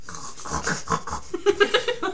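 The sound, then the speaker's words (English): Someone imitates snoring with a string of raspy, breathy rattles, starting slower and then quickening into several short, buzzing pulses. No words are spoken. “That's what your snoring sounds like?”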